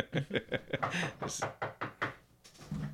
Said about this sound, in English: Don't get so scared. I don't know what that is. Oh, that's a knock.